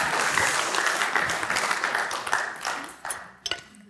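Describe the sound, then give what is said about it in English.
A crowd applauds with steady, dense clapping that thins out toward the end, leaving a few scattered late claps. “That was a funny clap.”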